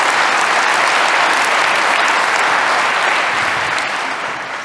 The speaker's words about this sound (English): My team, if they did not deliver on the metrics that I was able to proudly show to you, I would not have able to be even stand here, right? So please, a round of applause for them.